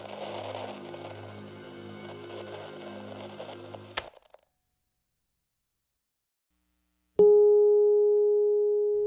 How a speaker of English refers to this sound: Follow the bell, listener.